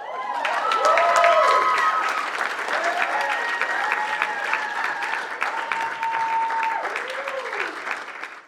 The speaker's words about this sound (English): So let's give Faye a huge round of applause.